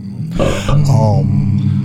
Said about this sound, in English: Was that a belch?